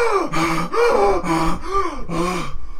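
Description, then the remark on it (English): A voice imitates a man desperately gasping for air as pressure is let up off his neck, five or six loud, ragged inhaled gasps in quick rhythmic succession, alone with no other talk. “Let pressure up off of his neck so then he can breathe. The big person kind of does this, unleashes it. Marcus is gasping.”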